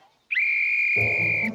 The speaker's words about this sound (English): Armed with a whistle, Hamish is the self-appointed referee for the day.